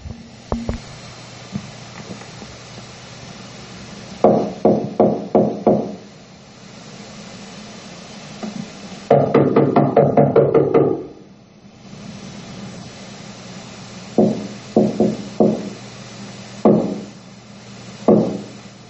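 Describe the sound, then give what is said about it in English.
A man knocks on a door for his wife to answer: several bursts of firm knocking, three or four raps at a time separated by pauses, fairly loud over a steady low hum, with one longer flurry of rapid knocks midway. “hopefully my wife is going to answer the door so we can freaking talk here”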